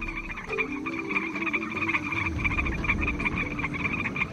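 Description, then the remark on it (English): A dense chorus of frogs croaking continuously, with steady pulsing calls layered over one another and a few deeper croaks, no voices present. “Why are so many species of frogs and toads disappearing?”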